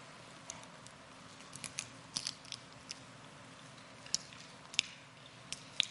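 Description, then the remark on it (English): Quiet chewing of communion bread: scattered soft crunches and small mouth clicks come at irregular intervals over a faint hush, with no talking. “So we too eat the bread and we remember.”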